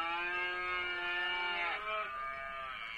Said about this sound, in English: Does it actually moo? It does.